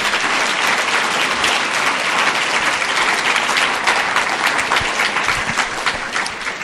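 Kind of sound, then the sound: crowd, audience round of applause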